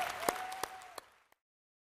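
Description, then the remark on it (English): The Life Church audience applauding together to welcome new believers, a dense patter that fades out within about a second, with a few louder individual claps and a steady high whistle-like tone over it. “Lift up your voices, clap your hands, and welcome those born into God's family.”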